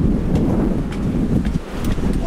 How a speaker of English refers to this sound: Whoa! I'm almost blowing off the boat. I have to hold on to the rails because it's so windy.